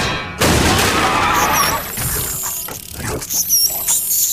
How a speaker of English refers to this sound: The door bursts open.